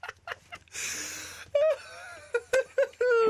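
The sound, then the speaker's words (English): A voice imitates a man masturbating with heavy breathing and moaning: a long, breathy rasp of air followed by a string of short, rising groans, fairly loud, with no other talk. “Doing heavy breathing.”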